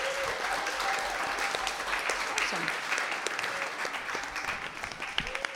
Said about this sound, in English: Thank you. Let's give our artists another round of applause.